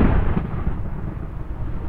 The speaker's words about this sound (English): Oh, there's the flames I was hearing. Fireplace upstairs here.